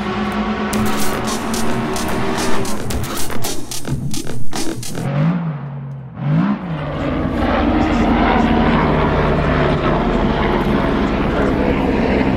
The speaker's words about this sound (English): Five past one, Sunday afternoon, and the sound of helicopters and cars tells you that the race is still running.